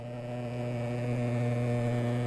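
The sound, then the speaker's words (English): A steady, droning engine buzz with strong harmonic bands, continuous and fairly loud throughout, from a motorized fogging machine as pest control teams fire thick white clouds of insecticide against mosquitoes up trash chutes and down drains in Singapore. No one speaks. “That's just the sound of mosquito fogging.”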